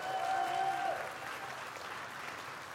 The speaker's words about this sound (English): So if you're excited about the fact that someone has been welcomed into the family, could you show that by getting excited and clapping your hands